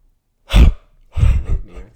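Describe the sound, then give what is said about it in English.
A sharp breathy intake, then after a brief pause a longer muffled, voiced exhale, like a yawn being stifled partway. Fairly loud, with no talking. “You ever try to end a yawn early and it doesn't work?”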